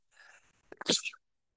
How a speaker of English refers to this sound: Just give me a second. I just gotta go. Just gotta blow my nose, and I'll just be right back. I'm sorry. When I get these sneezing attacks, it takes a while, so we may be interrupted a few times.